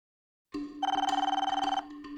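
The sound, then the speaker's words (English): A telephone bell rings with a rapid, rattling trill, loud, in a steady burst that continues to the end without any voices. “The phone rang one day, just before they opened, and it was the curator.”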